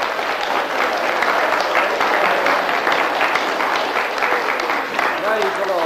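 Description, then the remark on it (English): A large crowd at a religious meeting applauds steadily and loudly for several seconds, a dense wash of many hands clapping, with a man's voice speaking briefly over it, welcoming a man from Nigeria who has been called up to the front. “Everybody give him a hearty clap.”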